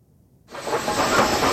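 After a brief moment of quiet, Union Pacific steam locomotive number 4014, one of the biggest steam locomotives ever built, suddenly lets out a loud, steady hiss of steam that rushes on without pause as it pulls out of Cheyenne, Wyoming. No one speaks.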